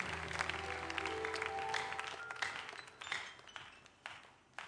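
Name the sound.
audience clapping hands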